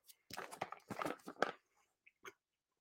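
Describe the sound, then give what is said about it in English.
Chewing on big crunchy sweets: a quick run of loud, irregular crunches for about a second, then a pause and a couple of softer chomps. “Right, so, because now you can't, no one wants to listen to me chewing.”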